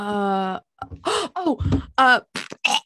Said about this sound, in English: she burped.